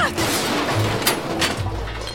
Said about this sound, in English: What do you think he crashed into there? It sounded like antique bottles.